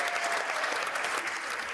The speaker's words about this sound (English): Biden taking his applause for a moment.